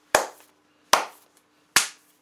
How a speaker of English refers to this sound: And we'll do three claps.